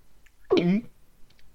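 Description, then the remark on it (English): A single short, exaggerated cartoon-style gulp made with the voice, a quick pitched vocal burst with a throaty bend, standing alone against near silence. “What was that cartoon gulping noise for?”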